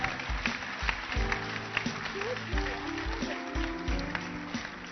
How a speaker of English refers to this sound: Honor the gift of God in our midst. Clap, keep clapping, keep clapping. Don't stop.